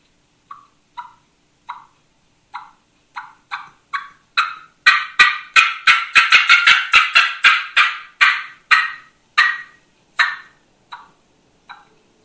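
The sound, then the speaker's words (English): A turkey fly-down cackle imitated on a mouth call: sharp, loud yelps start sparse, speed up into a rapid, excited burst, then slow again. No talking. “I'll do a fly down again.”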